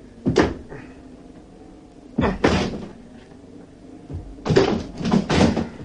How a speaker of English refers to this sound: I'm going to try and force the door.